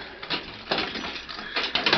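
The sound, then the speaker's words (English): An iron jail cell door being unlocked by the sheriff: a series of irregular metallic clicks and clunks as the lock turns, moderately loud, with no voices. “That evening, the sheriff went to the cell where Deke Bowers had been held in spite of his protests and unlocked the iron door.”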